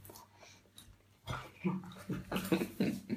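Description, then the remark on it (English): After a moment of near-silence, the dogs Leo and Daisy rush to the door together and break into a rapid, excited string of barks, several sharp yaps tumbling over one another at moderate volume. “They rushed to the get door together, barking crazily.”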